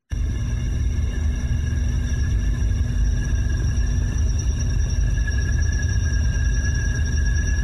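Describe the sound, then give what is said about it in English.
An electrical storm as captured on tape: a steady, loud low rumble and hiss with several thin, unwavering high-pitched whistling tones running throughout. No one speaks. “And I think this is the electrical storm in the way that it sounds on tape.”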